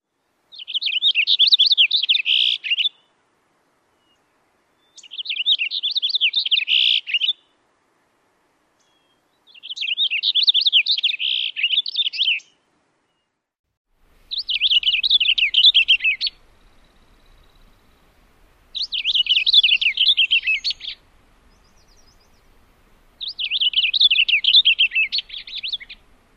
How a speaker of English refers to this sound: Cassin's finch sing a rolling warbler song with a fast series of short syllables. They can also mimic other birds, so be watchful of that. One more time, the Cassin's finch song.